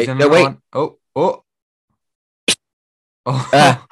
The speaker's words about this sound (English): Oh, I'm going to sneeze again.